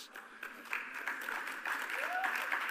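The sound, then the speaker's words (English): An audience claps steadily throughout, a dense wash of many hands at moderate loudness, with faint voices underneath and a brief rising whistle-like tone near the end. “And yeah, we all start clapping.”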